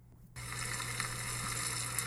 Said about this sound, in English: That is not rain on a roof. It's mealworms eating a bat carcass.